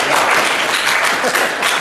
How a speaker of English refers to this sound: You can clap for it if you want to.